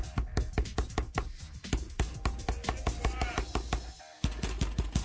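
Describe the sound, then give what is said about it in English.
Someone pounds hard on a door in a rapid, uneven flurry of loud thuds, with a busy noisy background and a brief pause near the end before the banging resumes. “Open the door. It'll take Brady a little while. Pound it. Pound it.”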